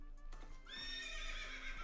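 A horse whinnies loudly, a shrill, wavering neigh that rises and holds for over a second, preceded by a few soft thumps like hooves.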